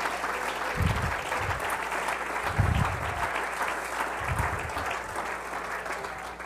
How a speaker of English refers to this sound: Oh, come on, clap your hands unto the Lord right now.